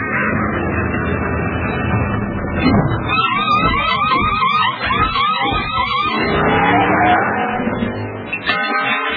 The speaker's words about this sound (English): That was the fastest pit stop I've ever seen. It was a great stop, but he's still got to beat that race car out.